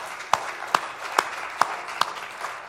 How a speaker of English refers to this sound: All the applause goes to my wife. She put in a lot of work.